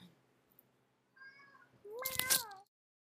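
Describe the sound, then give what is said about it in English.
A cat meows twice, first a soft brief mew, then a louder, drawn-out meow that rises and falls, with no one talking. “Meow. He's gonna want back in like a minute.”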